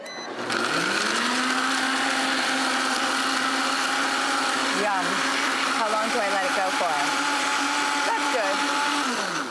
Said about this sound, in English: And then you blend it. And then you blend it. All right, here we go. Ready?